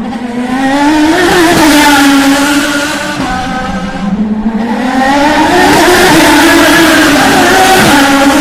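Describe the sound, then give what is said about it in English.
Loud, high-pitched engine whine of IndyCar race cars roaring past at close to 200 miles an hour at the Baltimore Grand Prix, the pitch rising and falling in sweeping passes, with a brief dip before another car screams by. “IndyCars, the fastest cars on earth, winning by you at 200 miles an hour.”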